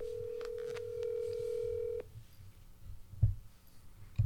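A single steady ringback tone from an outgoing call to a mobile phone hums for about two seconds, then cuts off abruptly, leaving low background rumble and a couple of soft thumps.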